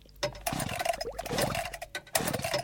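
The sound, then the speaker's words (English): An electric drill sputters as it tries to start, its motor whining in uneven bursts with brief pauses before catching again, a steady mid-pitched hum running under the rough, buzzing noise. “Okay, stand back, wait, I shall now start the drill.”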